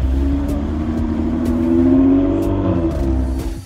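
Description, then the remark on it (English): A car engine at a NASCAR event in Las Vegas revs and accelerates steadily to over 100 while establishing pit road speeds, its strained tone climbing in pitch and holding loud throughout, with no voices over it. “We got to get up over 100.”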